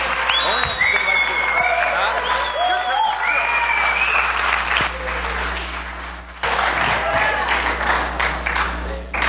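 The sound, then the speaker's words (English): An audience claps steadily in a dense, continuous wash of applause lasting the whole stretch, with raised voices and shouts riding on top and a brief dip partway through. “Please put your best hand clap together”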